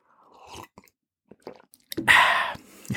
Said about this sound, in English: I'm just going to have a sip of coffee.